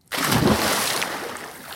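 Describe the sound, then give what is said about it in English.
A heavy body, a man thrown off a dock, plunges into the water with a sudden loud splash, followed by a second or so of churning, sloshing water that slowly settles. No voices. “So Frederick picks up his assailant and throws him off the dock into the water.”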